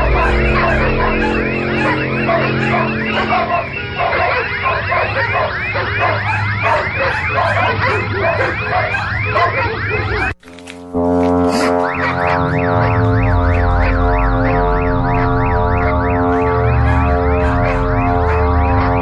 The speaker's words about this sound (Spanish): Además, guardar silencio en casa, poner los auriculares y escuchar Chile, el zumbido de la tierra 2013.